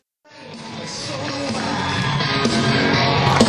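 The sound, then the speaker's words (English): A concert crowd cheers and yells as the singer and band leave the stage after the show, a dense roar that starts suddenly and keeps swelling, with scattered whoops and shouts poking out above the steady noise. “Listen to the people in the crowd.”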